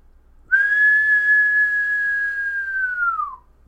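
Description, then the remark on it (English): A person imitates a long, sharp whistle: one sustained note that holds steady for about three seconds before sliding slightly downward at the end, loud, with no other sounds around it. “It's a long, sharp whistle. It's just, let me see if I could do it.”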